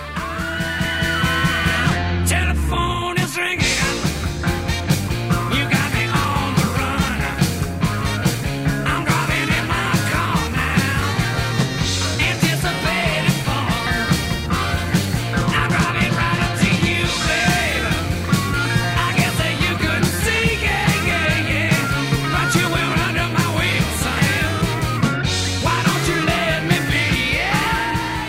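A loud, driving rock song with distorted electric guitars, a steady pounding drumbeat, a pulsing bass line and a raspy shouted vocal, playing continuously at full volume.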